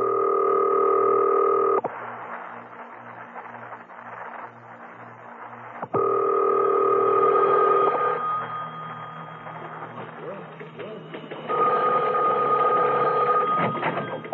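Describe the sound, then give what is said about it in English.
A telephone being dialed, with steady tones broken by runs of rhythmic clicking pulses, loud, and no one speaking. “Now, I must have quiet while I make this call.”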